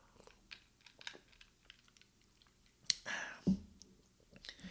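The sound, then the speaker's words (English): Quiet mouth clicks and handling noises, then a short slurping sip followed by a soft thud, like a cup being set down. Nobody speaks. “Let me take a sip.”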